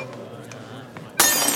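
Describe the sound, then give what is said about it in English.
A few faint clinks over a low background murmur, then a drinking glass suddenly shatters near the end, a loud, bright crash with glittering fragments ringing out. “Hand me that glass.”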